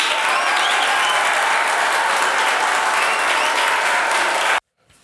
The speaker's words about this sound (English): Insert applause here.